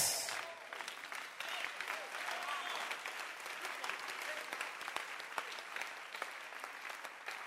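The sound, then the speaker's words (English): An audience applauds steadily for several seconds, a dense wash of many hands clapping at even loudness, with scattered sharper claps standing out and faint voices murmuring beneath. “As you are clapping, listen to me carefully because you will remember me very soon.”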